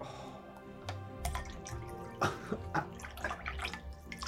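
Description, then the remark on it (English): Liquid trickles and splashes into a cup poured from a height (a tall pour), taking turns filling the cup in a game, a steady watery pour with scattered drips and small splashes, moderately quiet, with no talking. “I'm gonna do the tall pour.”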